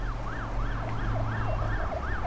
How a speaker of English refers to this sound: Black cars with sirens, flashing lights and tinted windows zipped around the city. They carried Russian officials, meeting each other in person, too scared presumably to talk on the phone about what had just happened.